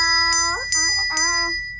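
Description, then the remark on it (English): A bell rings three times in quick, evenly spaced strikes, each a bright metallic ding whose tone hangs and overlaps the next, with a voice briefly audible underneath. “That's the bell.”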